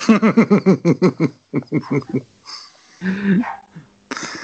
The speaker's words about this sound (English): Fucking Doug. Just to bark at this exact moment. He's always been a Jango Fett man.